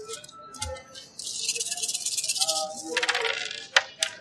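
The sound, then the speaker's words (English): Thirteen dice rolled for damage in a game rattle steadily for a few seconds, fairly loud, then tumble out with several sharp clacks as they settle. “So 13 dice for damage here.”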